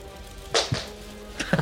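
A lighter drops onto a table and clatters, giving a few sharp knocks: two close together, then a brief pause, then two more bright taps before it settles.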